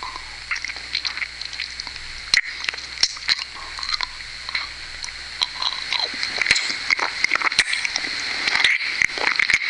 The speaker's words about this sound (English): You like the sucking noise?